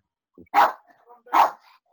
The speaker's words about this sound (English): I think we had the fireworks here. I think my dog's barking because there was apparently there's someone had fireworks. I didn't hear any fireworks.